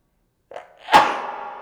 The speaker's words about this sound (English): I'm going to sneeze. Uh-oh. Don't look at the lights.